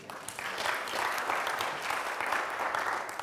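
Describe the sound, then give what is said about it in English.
A crowd of worshippers at a worship service claps together in steady, sustained applause, a dense wash of hand claps at moderate volume with no one speaking. “You can clap for that.”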